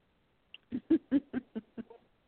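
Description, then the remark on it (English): A pet bird named Pony Bird blows kisses, making a quick run of about six evenly spaced kissing smacks after a tiny opening click; no one talks. “Pony Bird's over here blowing kisses. Because he wants attention.”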